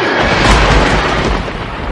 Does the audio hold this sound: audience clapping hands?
no